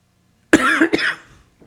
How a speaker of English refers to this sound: You did that right at me. It was a dry cough.